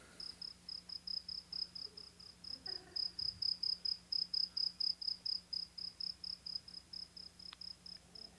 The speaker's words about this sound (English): Yeah, crickets.